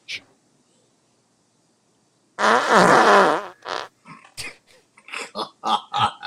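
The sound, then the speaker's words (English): A loud, buzzy, wavering fart-like blast blown through a cardboard Good and Plenty candy box, lasting under a second after a brief quiet stretch, followed by people talking. “Farting through a good and plenty box, dude.”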